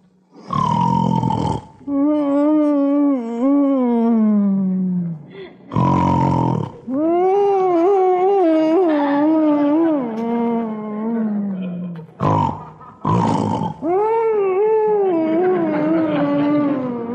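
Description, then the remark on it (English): Loud, exaggerated snoring of a husband lying in bed in the dark: three cycles of a harsh, rasping snort followed by a long, wavering, voiced groan that slides up and down in pitch, with no talking in between. “Blanche Bickerson lies tense and sleepless in the dark as poor husband John, tortured by the guilt of having missed his own anniversary party, suffers another attack of intermittent insomnia, or woodchopper syndrome.”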